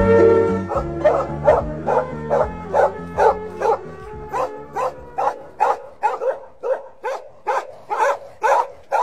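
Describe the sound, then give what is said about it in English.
A dog barks loudly in a steady, rapid series of about twenty sharp barks, some with a whiny, whimpering edge, and no one talking. “If someone doesn't shut Lassie up, I'm going to send him to a North Korean dog food factory.”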